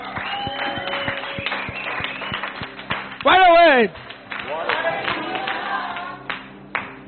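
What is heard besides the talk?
audience clapping hands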